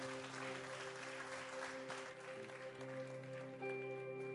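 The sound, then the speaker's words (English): An audience applauds in a dense, steady wash of clapping that holds for several seconds, with a sustained instrumental chord droning underneath throughout. “Let's give them one more round of applause for the work that God is using them to accomplish.”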